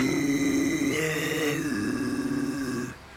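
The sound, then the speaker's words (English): A man lets out a sustained, throaty grunt for about three seconds, a low rough growl held steady with a couple of pitch shifts, attempting a metal-style scream before cutting off abruptly. “Anybody can grunt, which is what he's doing.”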